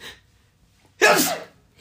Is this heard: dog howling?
no